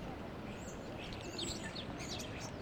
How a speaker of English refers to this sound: Apart from birdsong and construction noise in the distance, there is not much going on near the Berlin Town Hall or Alexanderplatz these days, after federal and state officials cancelled all such gatherings across Germany.